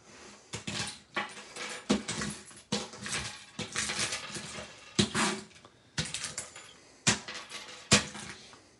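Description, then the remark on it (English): A Sticky Buddy sticky lint roller is pushed back and forth over loose staples, paper clips and rubber bands, making a series of crackling, clicking bursts and small metallic rattles in an irregular rhythm, fairly loud, with no talking. “So we have some staples, paper clips, and rubber bands. How does a sticky buddy work on these items?”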